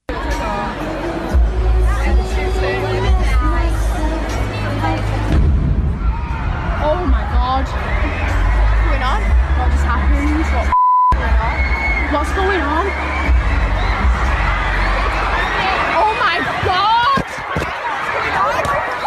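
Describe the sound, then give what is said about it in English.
A large concert crowd screams and shouts in panic after an explosion adjacent to the theater, stampeding: loud, a dense continuous wall of frantic cries and yelling, briefly cut by a short beep-like dropout midway before the chaos resumes. “You heard the explosion in the background that was apparently adjacent to the theater to get as much carnage as possible.”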